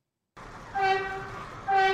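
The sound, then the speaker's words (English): A subway train rumbles loudly at an A train subway platform in Queens, a steady roar topped by a sustained high tonal whine that swells twice, growing louder toward the end, with no voices. “Jack Barsky says he was on his way to work in December 1988, standing and waiting for an A train on this subway platform when a stranger paid him a visit.”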